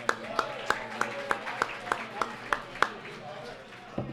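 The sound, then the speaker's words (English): Applause for an arriving guest, a former Bearcat guard who just walked in, comes as about ten sharp, evenly spaced claps in a steady rhythm, then one last clap after a short pause, with a faint murmur of voices underneath. “Everybody, can we have a round of applause for another great Bearcat guard,”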